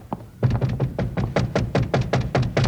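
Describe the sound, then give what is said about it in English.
A rapid, insistent series of about a dozen knuckle knocks on a locked wooden door, fairly loud, with solid hollow thuds in a quick uneven rhythm and no talking. “Blotzen mit der knuckles. That's right. Go ahead and blotzen.”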